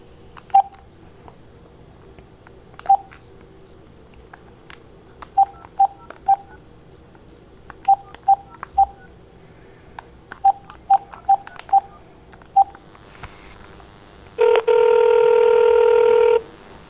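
A series of short, evenly spaced keypad beeps as a phone number is dialed to call someone back at home, about sixteen quick tones in irregular clusters, followed by a steady, louder ringback or line tone at the end.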